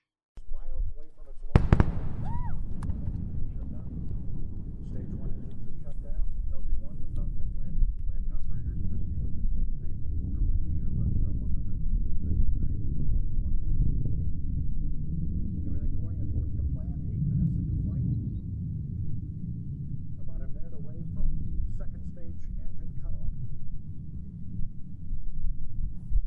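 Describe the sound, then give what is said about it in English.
Three sonic booms: a sudden sharp crack followed by loud, deep rumbling that rolls on and echoes for many seconds, with a few faint voices in the background. “So yeah, three sonic booms.”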